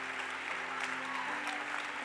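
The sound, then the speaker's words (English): A church audience applauds together for Jesus and for newly ordained pastors, a dense steady wash of many hands clapping at an even loudness, with a faint sustained hum running beneath it. “Clap for Jesus and clap for these wonderful pastors.”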